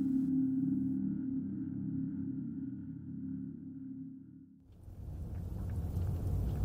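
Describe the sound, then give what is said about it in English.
A deep, steady rumble drones for several seconds, then gives way abruptly to a loud, hissing roar of gale storm wind with thunderous low rumbling underneath. No voices. “We left the bunker today for a short period of time despite the storm.”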